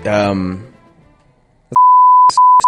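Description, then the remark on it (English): A voice trails off, then after a short pause a loud, steady censor bleep tone sounds for about a second, bleeping out a name, cutting in and out abruptly with sharp clicks at its edges. “It's redacted.”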